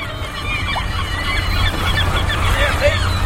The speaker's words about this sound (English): By the sound of this racket, you wouldn't know but what I live in a seagull colony.